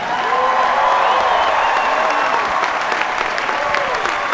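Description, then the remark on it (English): Dense, sustained applause from a large audience in Boston, steady and loud throughout the few seconds, with scattered cheers and voices mixed into the clapping, as Boston Mayor Thomas M. Menino is saluted and applauds the audience. “Mayor Menino applauding the audience.”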